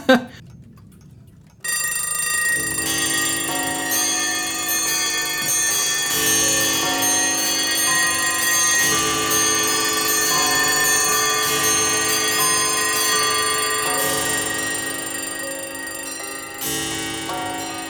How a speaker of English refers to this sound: And then all of a sudden, like, about like 10 to 15 clocks at once just go off.